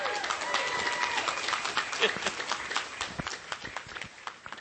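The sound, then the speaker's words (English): An audience applauds steadily to welcome a guest speaker, a dense wash of many hands clapping at once that holds for several seconds and thins slightly toward the end, with faint voices mixed in. “So I'd like for you to give a very welcome, warm applause”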